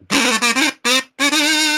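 A duck quack sound effect: a duck quacks loudly in a quick run of four or five nasal calls, alone, the last one drawn out longer than the rest.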